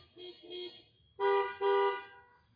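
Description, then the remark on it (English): Car horns honk outdoors in the morning as people sitting in their cars signal in response: two fainter short beeps, a brief pause, then two louder, longer blasts close together, with no one speaking. “So, yeah, signal this morning with your car horn, not your vocals, because I can't hear you.”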